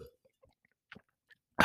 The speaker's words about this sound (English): Let me get a little sip of crap.